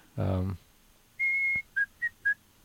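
After a brief low vocal sound, someone whistles a short, clear melody: one long held note followed by three quick, slightly lower notes, close and fairly loud.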